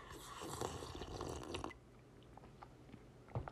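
A noisy, wet slurp of hot coffee lasts under two seconds, then gives way to soft swallowing clicks and small mouth sounds against a quiet background.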